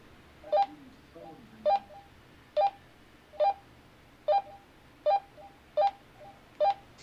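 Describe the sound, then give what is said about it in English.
A series of eight short radio keypad tones sound at a steady, slightly uneven pace, each a crisp dual-pitched beep, as someone tries to enter tones for a repeater on Santiago Peak. Faint low murmuring sits underneath. “How to do these tones in”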